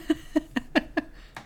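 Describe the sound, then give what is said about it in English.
A Skype incoming-call ringtone: a quick, evenly spaced series of six short, bright tonal pulses with a buzzy, old-fashioned phone-ring quality, sounding alone at moderate volume. “Why does your Skype thing sound like a regular old-timey phone call?”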